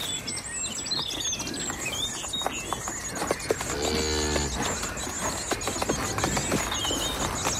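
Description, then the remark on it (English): Irregular clattering hoofbeats of a neighbour's cattle moving along a hard road, with one low moo partway through and birds chirping faintly in the background. “At the clatter of hooves along the road that announced the end of this idyll. Cattle set by a neighbour to make a few pounds.”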